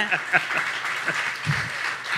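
A short burst of audience applause, dense overlapping claps at moderate loudness for a couple of seconds, with a few faint voices mixed in.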